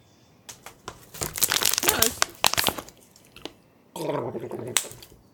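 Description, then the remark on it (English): Crinkling of a plastic bottle with sharp clicks and sips as someone drinks water, imitating Hideo Kojima drinking a can of Pepsi, followed by a brief vocal noise at the end. “He actually has water.”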